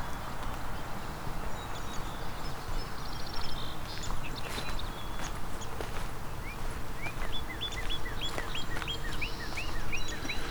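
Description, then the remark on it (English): A northern cardinal sings a run of quick, repeated slurred whistles, layered over a busy chorus of other birds and steady background noise. “Is the northern cardinal singing? And these short little, there's the northern cardinal again.”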